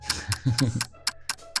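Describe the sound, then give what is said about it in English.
A clock ticks steadily overhead, about four crisp ticks per second, with a low murmur of voices briefly underneath in the first half. “You see this clock that's like ticking above you here.”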